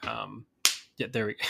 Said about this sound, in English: That wasn't even post. You didn't have to slap me.